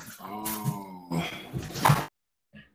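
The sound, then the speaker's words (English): Dogs whine and yelp excitedly in a couple of drawn-out, high-pitched, loud bursts, then fall quiet before one short, faint yelp. “Oh, my dogs are going crazy.”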